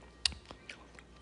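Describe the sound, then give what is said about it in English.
Wet chewing of a seedy grapefruit, with a sharp crisp bite followed by a few softer squelchy mouth sounds over about a second, quiet with no talking. “I think I swallowed a seed. I'm not lying. I think I actually swallowed a seed.”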